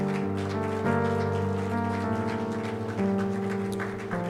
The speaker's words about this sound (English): Let's pray. Let's clap. Let's wait for them.